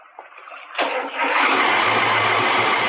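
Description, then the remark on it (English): A boat engine coughs and catches, then settles into a loud, steady droning run with a low hum underneath and a wash of noise over it. No one speaks. “Try the engine now.”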